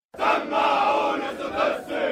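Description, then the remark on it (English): A group of police recruits chant together in loud, forceful unison at the start of their day inside an enormous police compound on the outskirts of Cairo, their massed voices rising and falling in short rhythmic bursts with brief dips between phrases. “"Let me hear your loud shouts," they sing.”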